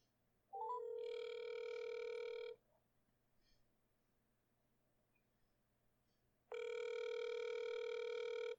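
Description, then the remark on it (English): Two long ringback tones from an outgoing phone call, a second attempt to reach a guest on a show, each about two seconds of steady, buzzy harmonic tone, separated by a roughly four-second pause with a faint low hum underneath. “All right, with that being said, we're going to move on, but before we move on, we're going to try Andy again, because he said, call again.”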